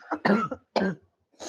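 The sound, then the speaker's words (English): A person coughs in a rapid series of harsh, raspy bursts, about three or four hacking coughs with short pauses between them and no talking. “Hold on, God, I have bless to cough.”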